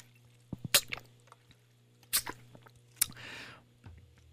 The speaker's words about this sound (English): As excuse me, while I take a sip of water.